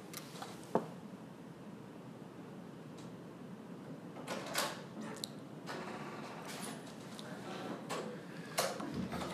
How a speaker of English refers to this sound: I'm guessing all of us heard the door open.